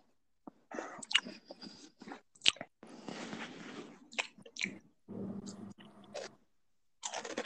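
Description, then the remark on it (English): Crunchy chewing of crisp Cheez-It cheese crackers, with irregular bursts of crackling bites and squishy mouth sounds over several seconds, loud with brief pauses between chews. “No, I'm just snacking on some Cheez-Its.”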